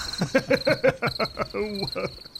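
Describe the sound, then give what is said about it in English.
A steady, high-pitched cricket chirp sound effect runs throughout, with a quick string of rhythmic voice-like bursts and some talking layered over it at moderate volume. “It's a whole field of crickets marching through.”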